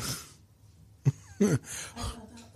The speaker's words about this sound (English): I'm literally coughing because you're so funny.